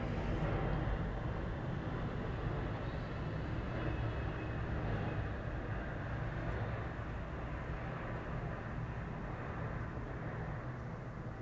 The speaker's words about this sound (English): Sorry, plane. Let's hold for a plane.